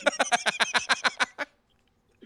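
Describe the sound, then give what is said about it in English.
Someone imitates a guinea hen with a quick run of about ten loud clucking bursts in a steady rhythm, then stops abruptly into silence. “I'm a fucking hen over here.”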